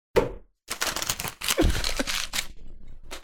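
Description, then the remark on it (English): A sharp paper slap, then a stretch of dense, crackly paper crumpling, ending with a brief rustle as the ball is tossed; no one speaks. “The sound of the slap, the crumple, and the toss.”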